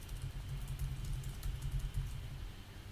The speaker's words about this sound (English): Right, if you hear typing, that's me firing off the tweets. Right. So apologies for that.